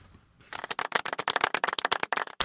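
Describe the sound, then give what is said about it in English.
A short burst of light, polite golf clapping from a soundboard effect, a steady patter of crisp hand claps that starts after a brief quiet moment and runs for about two seconds with no one speaking. “Oh, now we're just going to get golf claps and sad trombones.”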